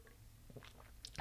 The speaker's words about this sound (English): Another sip of Harpoon Retro Rye as we go through this rant.